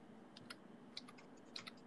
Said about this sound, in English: Okay. I'm typing in XXX in the search.